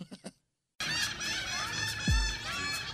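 seagulls calling

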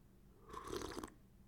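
sipping coffee

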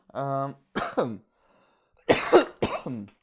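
person coughing

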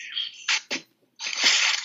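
sneeze

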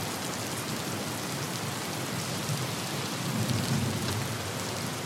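rain falling outside

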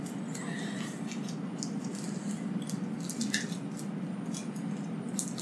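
shuffling cards

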